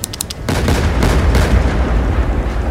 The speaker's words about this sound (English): I just planted myself against the storm and pulled the triggers, as fast and as often as I could.